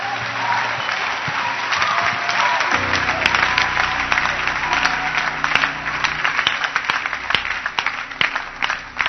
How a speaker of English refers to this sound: Clap your hands for church.